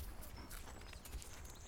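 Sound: horse hooves clip-clopping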